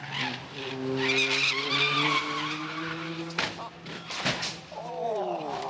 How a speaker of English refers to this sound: The support vehicles go to the crash on the racetrack. Sometimes, though, the crash comes to them.